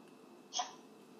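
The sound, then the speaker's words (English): A single quick sip of Starbucks coffee, a short slurp lasting a split second against a quiet background hum, with no talking. “I'm going to take a sip of my Starbucks coffee here.”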